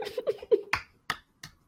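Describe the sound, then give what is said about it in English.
Three sharp, evenly spaced claps, a slow deliberate clap, come after a brief stretch of softer mixed sound, each clap crisp and fairly loud with quick decay. “Are you slow clapping for me?”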